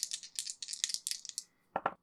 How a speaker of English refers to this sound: So I rolled a 6 and a 3 on dice, which is a 9, plus my newly upped tough of 3 is a 12.